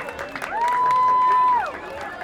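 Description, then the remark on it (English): A loud crowd cheers and screams as actor Paul Wesley, Dina Shahabi and writer-director Sean Mullen are welcomed, with one long, high, sustained shriek rising out of the roar midway before the noise settles back into general cheering. “Did you hear all this screaming going on?”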